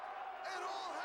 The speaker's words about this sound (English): Double choke slams the Pitbulls. Crowd goes wild.